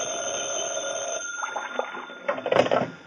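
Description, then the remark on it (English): A telephone bell in an office rings with a bright, rattling trill, first steady and then in short, clustered bursts, loud, with no voices. “I'd gone back to my office to cool my heels for a while when the phone rang.”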